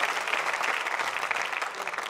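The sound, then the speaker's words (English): An audience clapping their hands together as praise to the Lord in a dense, steady burst of applause, many overlapping claps blending into a continuous crackle that holds at an even loudness for about two seconds. “Can you give the Lord another hand clap of praise?”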